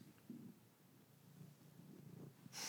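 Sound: cat vocalizing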